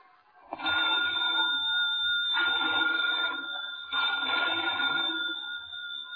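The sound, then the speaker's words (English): An old-fashioned telephone bell rings loudly and urgently in an old lighthouse, its metallic jangle sounding in repeated bursts with brief gaps between them, and no voices present. “Phone bells ringing urgently in the dimness of the old lighthouse.”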